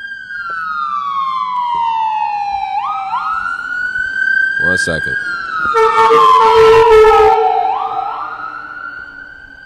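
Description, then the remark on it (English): A loud ambulance siren wails steadily throughout, its pitch sweeping up and down as it passes by outdoors, with a brief spoken remark partway through. “Hold on, we're gonna let this ambulance go by.”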